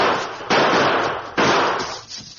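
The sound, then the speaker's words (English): Two loud, sharp gunshots spaced about a second apart, fired by the Lone Ranger and Tonto as they hurry down the steep slope of a gully, each followed by a long ringing echo that fades out, with no voices present. “The Lone Ranger and Tonto maintain spaced gunfire as they hurry down the steep slope of the gully.”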